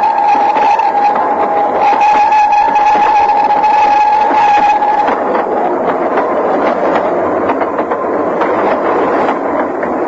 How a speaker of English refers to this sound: A rapid train passed below me and was skimming away over the landscape.